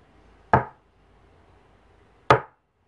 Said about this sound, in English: Like knocking on the wall, right? That was me hitting my desk, by the way.